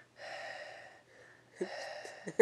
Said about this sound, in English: Last time I was like Darth Vader in the background. Mouth breathing extraordinaire.